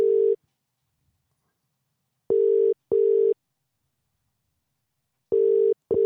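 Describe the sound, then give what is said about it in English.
A phone ringback tone on an outgoing call heard over Bluetooth: a steady, fairly loud electronic tone in paired short bursts separated by a long pause, repeating with no voices. “He might not even answer his phone.”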